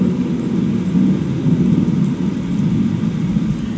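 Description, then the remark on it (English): A thunderstorm with heavy rain pouring down in a steady, dense roar, a low rumble running underneath throughout. Loud, with no voices. “Let this storm and this rain, let it be a sound of peace for the fact of knowing his voice is still there.”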